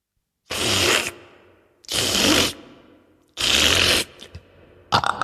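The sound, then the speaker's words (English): Loud, noisy crunching and chomping of a giant eating his supper in his house in a told story, in three long bursts with short pauses between, then a fourth beginning as it ends. No talking. “So she ran back to the giant's house, hid under his bed, and soon she heard the sound of the giant eating his supper like this, and you can join in.”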